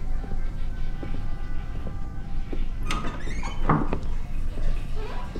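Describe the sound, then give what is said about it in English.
Door sounds: a few latch clicks, knocks and thumps as three doors near the end of a longish hallway down the stairs in a bar, including bathroom and office doors, are opened and their handles tried, over a steady low hum. “Three doors near the end.”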